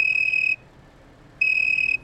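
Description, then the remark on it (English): A pet cricket named Chirpy chirps in two shrill, high-pitched bursts, each about half a second long, separated by a brief quiet gap over a soft background hiss. No one speaks. “Tiny, my pet insect informs me that an unwanted intruder may have hurled that teensy Bible from the back of this vehicle.”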